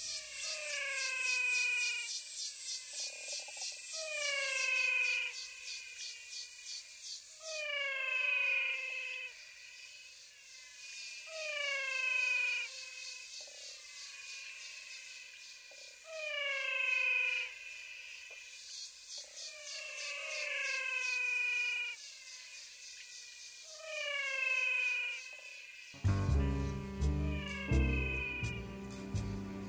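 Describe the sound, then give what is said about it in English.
A chorus of singing frogs of the Pantanal gives steady, repeated calls, each a downward-sliding, meow-like tone, over a constant hiss. Near the end a louder low rumble joins in. “I call them the singing frogs of the Pantanal.”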